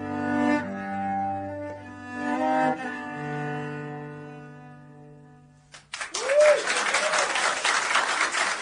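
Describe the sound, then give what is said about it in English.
A sustained musical chord fades out, then a small group of people in an office bursts into lively, steady clapping with a couple of whooping cheers after a live performance, continuing strongly to the end. “And those, you know, you heard clapping. We had people all over the office here that wanted to come in and hear, obviously.”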